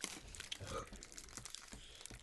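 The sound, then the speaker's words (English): Plastic cracker packaging crinkles and crackles in a steady, busy rustle for a couple of seconds, with sharp crisp snaps scattered throughout at a moderate level. “I got you guys crackers.”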